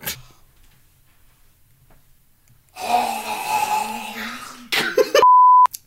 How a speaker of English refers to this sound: But first, we're going to beep this out because I have to clear my throat.